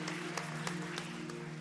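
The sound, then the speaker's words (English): A church audience claps together in praise of the Lord as they take their seats, a dense wash of hand claps with accents landing in a steady rhythm about three times a second, over a sustained low musical tone. “Come on, give the Lord one more hand clap of praise as you take your seat.”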